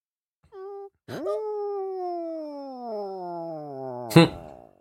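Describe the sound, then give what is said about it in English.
A female kitten, Eddie, gives a short mew, then a long, drawn-out meow that slowly slides down in pitch for about three seconds, ending in a sudden brief knock. Clear, no talking. “He kind of was making noise.”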